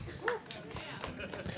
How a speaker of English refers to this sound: That was the appropriate applause. Yeah. That was the right amount of applause for that.